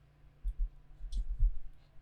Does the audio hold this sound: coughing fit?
no